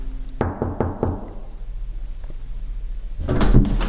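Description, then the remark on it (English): A series of four quick knocks on wood, a pause, then the clatter and creak of a door being opened to a professor's rooms up the stone steps of L staircase at Peterhouse College, Cambridge. No one speaks. “Two doors.”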